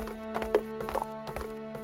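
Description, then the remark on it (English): A horse shuffles, hooves clopping in a few uneven knocks while a low snort or breathy blow rises over a steady hum. “Now you just pissed off my horse.”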